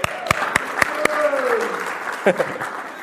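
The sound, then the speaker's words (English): An audience applauds for the worship music, starting with a few sharp, evenly spaced claps that blend into a softer wash of clapping, with a cheering voice rising and falling through it. “Can you hand it for the worship?”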